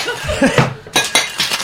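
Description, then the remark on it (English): A bartender's metal jiggers clatter and clink as they are dumped, a quick cluster of bright, sharp hits, with a few more rattling knocks following over a busy room's background noise. “Oh, Ivy's dumping jiggers everywhere.”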